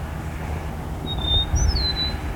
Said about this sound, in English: Meadowlark is still singing.